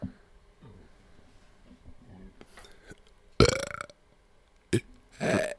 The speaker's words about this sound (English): That one sounded like a burp.